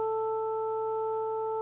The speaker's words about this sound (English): And we're creating this strange waveform down here by adding up a series of sine waves. As each one comes in, you can hear it individually. But you'd have a hard time now hearing this one individually anymore.